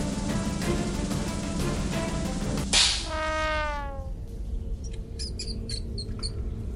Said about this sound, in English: A mouse. It was a fucking mouse. It squeaks.